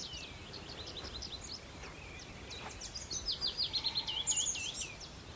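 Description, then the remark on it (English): Tree pipit song among sunlit oak and ash trees, a rapid run of high, repeated trilling notes that quickens toward the end, mixed with other birdsong including willow warblers over a steady outdoor hiss. “Yeah, it's tree pipits. It's hard to pick them out, but they're kind of more rapid.”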